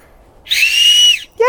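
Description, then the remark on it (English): A loud, shrill acorn cup whistle blown between the thumbs sounds once for about three-quarters of a second, piercing and slightly wavering, followed by the start of a voice right after. “So now you know, if you ever get lost in the woods and you need to find someone, you can just use an acorn cup and whistle.”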